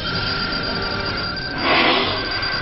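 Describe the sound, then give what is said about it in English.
Voices shout imitations of a dial-up modem at a man in a tiny motorboat: steady high whining tones under a rough, buzzing hiss, which swells into a louder burst of static about two-thirds through before settling back. “And just like before, some other ones ride up behind him, only this time they start shouting dial-up sounds at him.”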